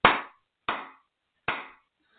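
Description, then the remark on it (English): Three sharp hand claps as part of an energy clearing and cleansing exercise, spaced unevenly with brief silences between them, each a crisp bright smack that decays quickly. No voices accompany them. “Another clapping, clearing there.”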